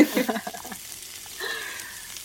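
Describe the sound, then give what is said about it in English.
Yam being stir-fried in a hot frying pan sizzles and crackles, a steady hiss with a burst of louder popping at the start that settles into a softer, continuous fry. “I feel like I'm in a Korean barbecue place.”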